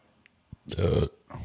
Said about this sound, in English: That's a nice burp for y'all.